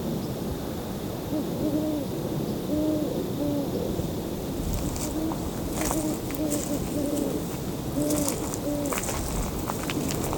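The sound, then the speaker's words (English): Soft owl hoots repeat in short series of low, wavering notes, sounding distant over a steady background hiss of outdoor noise, with occasional faint rustles and ticks. “I'm hearing owls, but they're very faint, a bit distant.”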